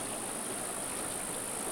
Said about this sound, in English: And so now we're up here at Heartbreak Meadows listening to the water. Not trying to figure it out. It's as clear as the sound of this water.